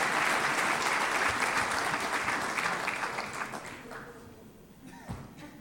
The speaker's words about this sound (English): Okay, thank you so much. Big round of applause for our volunteers there.